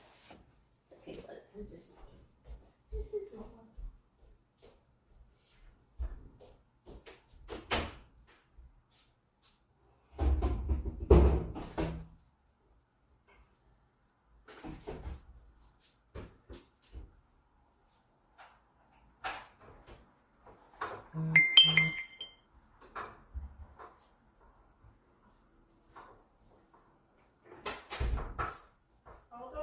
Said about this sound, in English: the water person is coming to drop off my BPA free spring water. I have to go. Hold on a second. I have to go put the water bottles out the door. Shit. Hopefully he can get in without me having to. Hold on. I got to go put those out at the door.